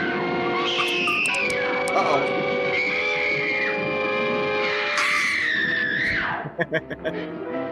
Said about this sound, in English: Uh-oh. That was a good scream.